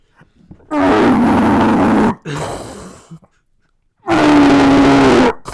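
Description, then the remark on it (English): A voice imitates a man's loud snoring: two long, harsh, rumbling snores with a throaty growl, separated by a short raspy breath and a pause, loud with no other talking. “Now I don't think he snores like that.”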